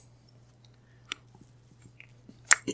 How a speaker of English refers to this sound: There's a sound from the receiver, like chewing.